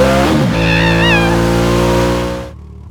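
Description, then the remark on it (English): A car engine revs up and accelerates as the driver hits the gas, with a rising, harmonic whine and a high squealing tone, holding steady loud for about two seconds before cutting off abruptly. “I am hitting the gas.”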